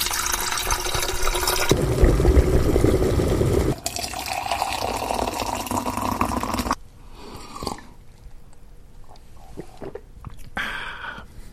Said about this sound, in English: Well, listeners, give us a moment to brew the tea, and then we will be back to share our findings. All right. I'll put the kettle on.